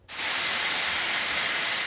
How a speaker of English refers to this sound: A burst pipe, water pouring on the floor.